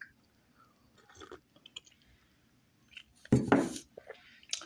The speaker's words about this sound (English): Let me sip some of this hot chocolate.